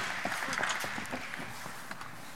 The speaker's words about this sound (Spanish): ¿Por qué no damos un aplauso a la historia de la Navidad? Muchas gracias, chicos. ¡Ay, niños!